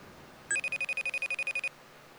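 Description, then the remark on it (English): A FaceTime video call's ringing tone sounds once: a bright electronic trill of a dozen rapid pulses lasting just over a second, clear, with no voices around it. “It's ringing. Ringing for Dave.”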